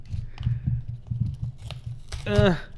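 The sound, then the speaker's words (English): A crunchy package is torn open, giving off bursts of crinkling and crackling over a low rumble, followed at the end by a short, loud voiced sound. “I really don't want to open this. It's crunchy, crunchy, crunchy.”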